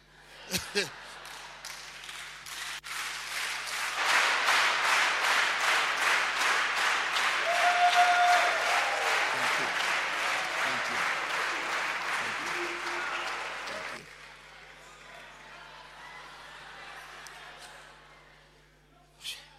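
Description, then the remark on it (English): A crowd bursts into sustained applause, dense clapping that swells quickly, holds strong for about ten seconds, then stops abruptly, leaving a faint murmur of voices. “This is what you see. Claps, sipping of water, going in cycles, compared with the testimony of God.”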